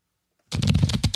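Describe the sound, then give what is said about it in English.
A deck of cards being shuffled, a quick burst of dense rapid flutter and clicking that starts abruptly after a brief silence and continues steadily to the end. “Let me give them a shuffle.”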